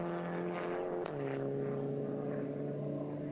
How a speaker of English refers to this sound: Here comes the number one car in for its pit stop